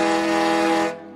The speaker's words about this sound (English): Diesel engines and steam engines are a little different from each other in the way they work. They sound different too. Steam engines have whistles that sound like this. And diesels have horns that toot like this.